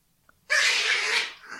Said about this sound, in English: Oh, she's... Jeez. She's protecting her barf? She's growling